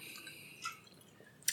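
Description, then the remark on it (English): A quiet sip of water: a soft wet slurp, then a brief pause and a second small liquid click or swallow, with no talking. “Let me drink some water and try that sentence again.”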